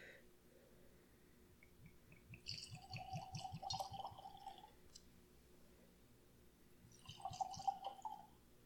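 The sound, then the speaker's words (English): Whiskey glugs from a bottle into a glass in two pours, a longer one and then a short top-up, with a rising ringing tone as the glass fills. No talking. “It's a big pour.”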